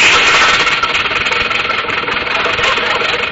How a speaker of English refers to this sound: I turned the key in the ignition, stepped on the starter, and felt the surge of smooth power as the motor caught, and we glided quietly into the fog.